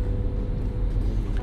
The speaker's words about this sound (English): A lot of traffic.